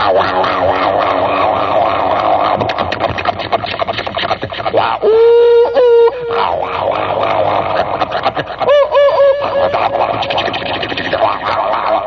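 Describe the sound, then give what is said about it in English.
A voice imitates a subway train roaring north: a loud, continuous rumbling rattle, broken by a couple of rising, whistle-like squeals partway through. “Subway sound, right? It's a pretty good imitation of it.”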